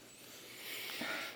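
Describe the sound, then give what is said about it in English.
A cold beer can, its label showing a lab and some Oreo cookies, cracks open with a short snap, followed by a soft, airy fizzing hiss of escaping carbonation, fairly quiet, with no voices. “Pop her open.”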